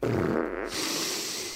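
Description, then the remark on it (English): A loud, buzzy fart sound effect lasting over a second, starting with a low rumbling blat and shifting into a noisier, hissing sputter toward the end. “Play me the fart sound.”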